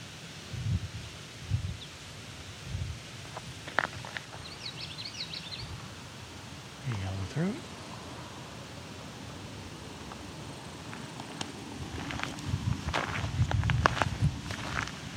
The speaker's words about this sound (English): We have a gust of air here. This vulture's riding the wind.